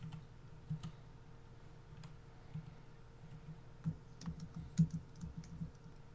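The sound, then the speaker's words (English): Soft, irregular typing on a computer keyboard, a patter of light clicks with a few sharper keystrokes, over a low steady hum, with no voices. “But you hear me typing”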